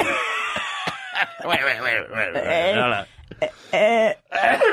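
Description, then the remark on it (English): A voice imitates a raspy, hacking cough, with a run of strained throaty bursts and groans delivered loudly, broken by short pauses. “And then it would go into that cough.”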